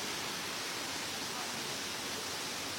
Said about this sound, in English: So nice, the nature. Can you guys see? Crystal clear water. So the water comes from all over the top waterfall, and then it's going down here.